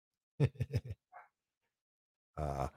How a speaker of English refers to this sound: That dog barking in the background is my dog Lulu, who has found something in the breezeway that she's afraid of. So she's barking at it.